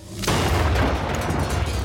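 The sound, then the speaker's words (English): A single British Army hand grenade, thrown at a car, glances off the rear wheel and explodes at waist height, bursting in suddenly after a brief quiet moment, then a loud, deep rumbling roar carries on to the end, heavy, with no voices. “But the explosion at waist height is enough to rip into the SS man's side.”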